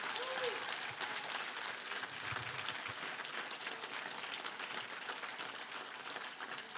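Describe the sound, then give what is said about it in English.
Sustained applause from a large audience at Bethesda Church giving God praise. A dense, steady wash of many hands clapping at an even level throughout, with faint voices mixed underneath. “Come on, give him a hand clap if you believe that.”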